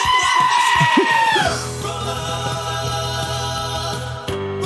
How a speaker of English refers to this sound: So if you want a screaming goat over the top.